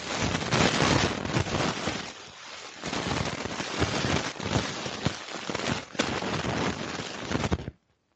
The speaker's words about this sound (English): Ooh, that was a storm right there.